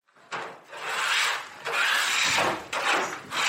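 A woman scrapes baking trays at night in long, rasping strokes, about four in a row with brief pauses between them. The harsh, hissy scraping is fairly loud and steady, and no one speaks.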